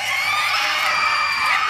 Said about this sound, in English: He shoots and hits one in the center of the head, between its cloudy eyes. All of them in unison begin to scream.